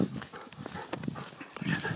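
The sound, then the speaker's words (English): A dog named Louis, a rather thin dog five weeks with its owners, moving around with scuffling and pattering steps and quick, breathy panting, in irregular bursts against faint outdoor background noise. “Ah, here he is. Oh, who's a great dog?”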